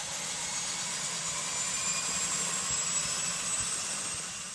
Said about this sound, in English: Let's lift up those water rudders. Pull the control column full aft. Apply full power, and let's get going on the step. Right engine is turning.